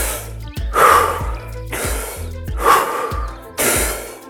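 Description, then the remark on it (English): Forceful, rhythmic Wim Hof method breathing close to the microphone: loud sharp inhales alternate with rushing exhales, about four cycles in quick succession, with no talking. “These techniques I learned from him. One, the breathing.”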